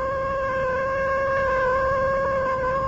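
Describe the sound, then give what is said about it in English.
A cat lets out one long, drawn-out meow, steady and fairly loud throughout, with no talking. “I told you it was a lucky cat.”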